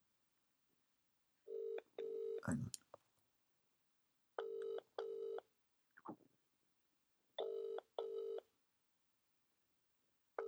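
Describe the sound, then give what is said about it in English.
A telephone ringing tone sounds through a handset as the speaker makes an outgoing call, in three evenly spaced double-pulse rings, with a brief spoken interjection and some handling noise between the first rings. “Let's give him a cheeky little call.”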